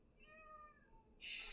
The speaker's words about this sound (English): So a minute passes. Nothing. You hear a cat. Twice.